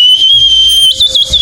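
A swanee whistle, a kind of slide whistle, blown alone: a shrill, steady high note that holds, then wobbles and slides up and down in pitch near the end, loud.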